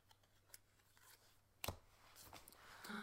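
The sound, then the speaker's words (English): Quiet papery rustling and light clicks of cards being handled, with one sharp snap midway and a busier riffling flutter toward the end; no one speaks. “Shuffle, shuffle, shuffle.”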